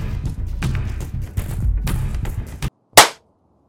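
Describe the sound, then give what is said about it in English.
A single sharp hand clap rings out loud and crisp after a brief pause, following a stretch of dense, busy sound, and fades quickly. “The clap has been transmitted.”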